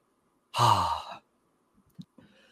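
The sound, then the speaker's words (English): A single loud cough from a person with allergies bursts out and fades over about half a second, followed by a few faint breathy rustles and short clicks. “I was holding in that cough forever.”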